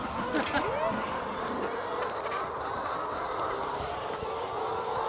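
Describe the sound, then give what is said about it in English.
A dense, constant chorus of hundreds of clucking chickens around a coop, many birds murmuring and calling at once, with a steady busy texture throughout and a faint voice underneath, as someone makes their way through them to the inside of the coop. “I am going to try and make my way through hundreds of inquisitive chickens so I can get to the inside of the coop.”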